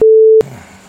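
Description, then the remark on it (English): A phone gives a single loud, steady electronic tone at a mid pitch, holding for under half a second before cutting off abruptly into faint background hiss. “You want to turn your phone on silent, mate?”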